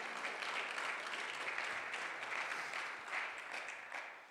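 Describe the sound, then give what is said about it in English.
An audience at a morning church service claps steadily, a dense, crackling wash of many hands that holds at an even level for a few seconds, with no voices cutting through. “And you can clap for that this morning.”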